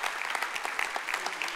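Steady audience applause for the church's pastors, a dense, continuous patter of many hands clapping at an even level for the whole stretch, with no voices standing out.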